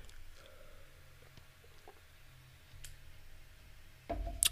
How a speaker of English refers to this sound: You know, let me get a little sip of water real quick.